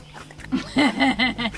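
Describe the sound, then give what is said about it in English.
A dog swimming in a pond lets out a drawn-out, gurgling belch in several wavering bursts, moderately loud, with no one speaking. “Oh, our dogs are talented. Oh, they even belch in the water.”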